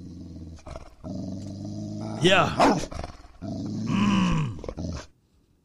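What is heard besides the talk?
animal growl sound effect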